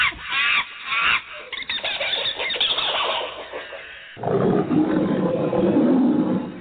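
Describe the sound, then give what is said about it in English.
A recording of rainforest animal sounds, a CD: shrill squealing cries and bird-like calls in loud bursts, then a deeper, sustained roaring growl takes over, with no one talking. “This is a bigger ripoff than Peter's … CD.”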